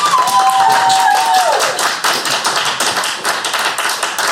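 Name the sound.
audience clapping to vote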